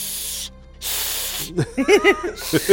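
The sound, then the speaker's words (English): A cat hisses twice in sharp, breathy bursts separated by a brief pause, loud, followed by people starting to talk. “Where'd that cat come from?”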